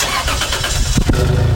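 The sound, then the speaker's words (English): A car engine cranks with a rapid, gritty churning, then catches near the end and settles into a steady low rumble of idling. No voices are present. “Is the startup from inside the cabin?”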